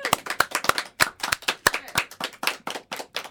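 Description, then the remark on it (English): A small group of guests in the studio claps steadily and enthusiastically after a song, sharp overlapping hand claps forming a lively round of applause that carries on throughout without fading. “Well, you might be wondering who all those people you can hear applauding are”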